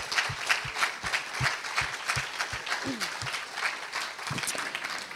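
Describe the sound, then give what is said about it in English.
An audience applauds steadily for several seconds, a dense, even patter of many hands clapping at once, fairly loud, with a few individual claps standing out and faint voices mixed in, clapping to celebrate their 24/7 youth workers. “So yeah, let's clap for our 24/7 youth workers.”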